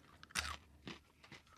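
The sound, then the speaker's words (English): Crisp crunching of a chocolate snack mix (chocolate chip cookies, white chocolate morsels, peanuts and Buncher Crunch) being bitten and chewed, with a loud bite followed by a few quieter crunchy chews in an irregular rhythm, no talking. “The Buncher Crunch snack mix. So it has chocolate chip cookies, Toll House, Premier White Morsels, Peanuts, and Buncher Crunch.”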